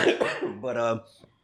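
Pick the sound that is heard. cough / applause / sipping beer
cough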